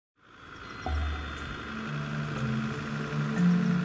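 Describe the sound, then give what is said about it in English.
The engine of Brutus, a big, tough truck driven out in the bush, runs steadily, a continuous low rumble with a droning mechanical hum that builds slightly in loudness, with no voices. “This is Brutus here. Brutus is my faithful truck.”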